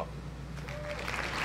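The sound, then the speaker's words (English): A burst of applause sound effect: dense, crackling clapping that swells steadily over a second and a half, staying fairly soft, with a low hum beneath and no voices. “It's funny, that's not a timpani, but that's okay. We'll take applause.”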